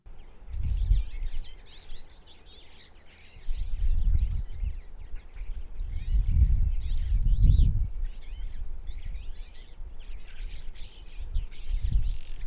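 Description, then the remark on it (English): A twite, a small passerine bird of the finch family, gives its chattering call: a busy, continuous stream of quick, thin twitters and trills, with intermittent low wind rumbles underneath. “Similar to the brambling, the Twite is a passerine bird in the finch family, meaning it has that special shaped beak for eating seeds and nuts.”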